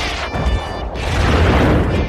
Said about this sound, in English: Maybe some sounds like a laser gun. There's some monkeys. Or some aliens. Or, explosions. Missiles launched.